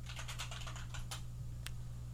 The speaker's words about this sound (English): Hold on, I'm typing.